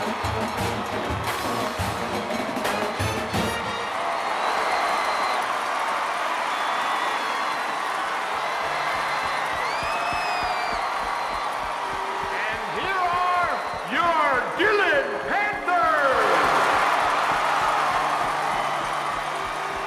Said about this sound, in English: you can just feel the electricity here in the football stadium. And Larrabee has taken the field, and this crowd is rocking as we wait for the Panthers.